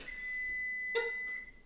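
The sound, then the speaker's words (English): A kitchen timer gives a short electronic beep, then a fainter second one, over a steady high-pitched hum. No one speaks. “The timer's gonna go off.”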